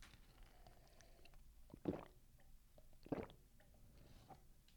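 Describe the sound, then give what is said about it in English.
Two loud, wet gulps, about a second apart, as a man swallows water while drinking, with quiet pauses around them and no talking; the microphone is out in front, not near his throat. “The person who's swallowing loudly.”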